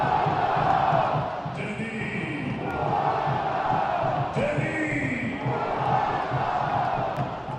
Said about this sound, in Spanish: Con furia y con mucho coraje Dennis Boanga, anotando su primer gol en este torneo de la MLS. 1-0, ya gana el equipo de Los Ángeles FC. Y la gente grita su nombre.